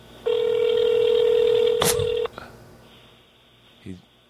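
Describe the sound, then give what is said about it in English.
A single loud ringback tone of an outgoing phone call to people on a golf course in Colorado, a steady electronic burr lasting about two seconds over a thin phone line, then quiet hiss and a brief click. “Hopefully, they'll answer. They're on a golf course in Colorado.”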